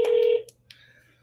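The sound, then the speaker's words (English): A telephone ringing on an outgoing call: one short, steady electronic ringback tone, fairly loud, cutting off after a moment and leaving a faint hum. No one speaks. “See if it starts ringing. It is.”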